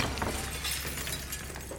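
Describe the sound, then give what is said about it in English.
A chandelier crashes down beside Hitler, with glass shattering in a dense, bright cascade of breaking and tinkling shards that keeps rattling steadily for a couple of seconds, fairly loud, with no voices. “At one point, Hitler is pulled out of harm's way, in the nick of time, as a chandelier comes crashing down.”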